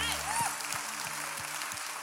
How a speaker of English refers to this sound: Amen and amen. Let's give God one more hand clap of praise because he deserves it.